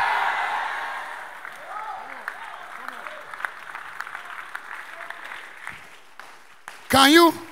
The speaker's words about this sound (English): Rise up and clap and shout and say yes.